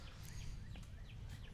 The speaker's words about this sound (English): I'm going to put music in the background, but there's still going to be the birds chirping. Maybe I should just leave the birds chirping in the background the entire time.